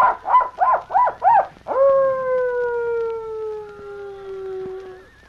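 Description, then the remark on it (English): A person imitates a coyote call as a signal near a gang's camp around midnight: four quick rising-and-falling yips, then one long, steady, slightly falling howl held for several seconds. It is loud and clear, with no talking. “Now, Tonto, give the signal. Let the Black Eagle know friends in there. Coyote signal? Yes, go on.”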